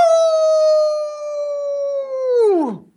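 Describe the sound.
A person does a single long, sustained imitation of a werewolf howl, holding a steady pitch for over two seconds before sliding sharply downward and trailing off. Loud and alone.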